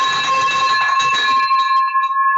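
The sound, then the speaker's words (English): A victory bell rings loudly to celebrate a first land deal, its clanging strokes blending into a sustained metallic shimmer with strong harmonic overtones that linger and fade over a couple of seconds. “Well, let's pause for a second and celebrate that first land deal that you did with the victory bell.”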